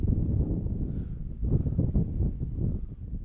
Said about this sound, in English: As that wind is just gusting from behind.